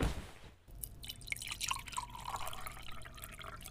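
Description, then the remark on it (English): Wine is poured into a glass, a steady gurgling trickle whose pitch rises as the glass fills, lasting a few seconds with no voices. “Goulard Butler sits next to Vlad while he pours him a glass of wine.”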